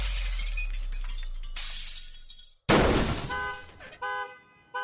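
An apartment window's glass shatters in a sudden, loud crash with bright scattering debris as a person is pushed out through it, followed by a car horn blaring in steady, high-pitched bursts. No one speaks.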